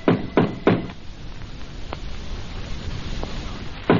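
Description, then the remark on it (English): Knocking on the wooden door of a store-like building in a coded pattern recognized by Lappin's gang: three quick, firm raps, a long pause with a faint tap, then one more solid knock. The knocks are sharp against a quiet, hissy background. “He and Jonah halt before the door. Roy knocks.”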